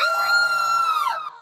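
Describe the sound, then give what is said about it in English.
A single piercing, high-pitched scream rings out loud from the bottom of a dark staircase leading down into a basement, holding steady for over a second before its pitch sags and it cuts off, with no other sounds around it. “The light dissipates after about 20 feet, and from the bottom, you hear a piercing scream.”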